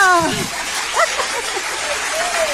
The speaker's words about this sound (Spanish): El aplauso, wow